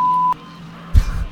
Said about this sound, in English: I can give you a censor beep.